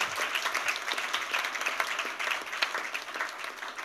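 A crowd applauds for the Lord, many hands clapping in a dense, continuous patter that holds at an even level throughout, with no voices rising above it.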